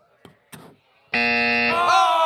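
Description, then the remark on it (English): After a couple of brief sounds, a loud, harsh Family Feud wrong-answer strike buzzer blares with a steady, dense tone for about a second, then shifts pitch as crowd noise rises. “I've been waiting for that X. Show us another X.”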